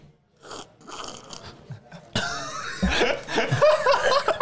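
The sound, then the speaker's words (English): Sputtering coughs after a person inhales a sip of beer while tasting it, starting as small bursts, then breaking into a louder, rough coughing fit with strained, voiced gasps at the end. “No, it's actually delicious, but I just kind of inhaled a little bit of it.”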